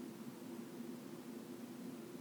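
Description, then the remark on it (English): A steady wash of radio static between stations, a constant even hiss with a faint low hum underneath, fairly quiet and unchanging throughout, with no voices. “And all you hear, right, is just that static.”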